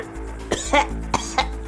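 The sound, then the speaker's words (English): A voice mimics the wet, gurgling coughs of a woman coughing up blood: four short, ragged bursts in quick succession, moderately loud over a low steady hum, with no words spoken. “She continues coughing up blood.”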